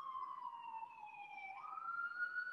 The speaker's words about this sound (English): Sorry, the sirens in the background.